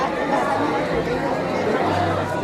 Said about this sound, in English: We're just making our way up a back street now. Still dozens of people. It's very busy.